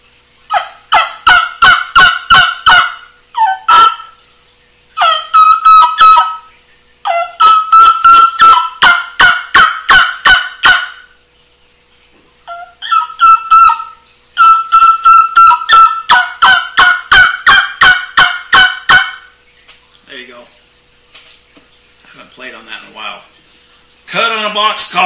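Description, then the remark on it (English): A handmade trumpet-style turkey call produces repeated series of sharp, high-pitched yelps and kee-kee notes in rapid rhythmic bursts, loud, with brief pauses between sequences and no talking. “This is one of my trumpets that I build.”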